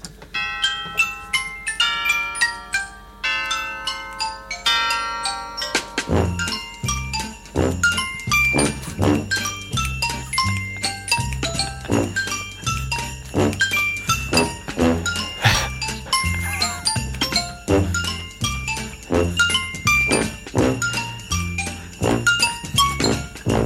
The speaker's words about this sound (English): They've got the sleigh bells. Yeah, they got everything.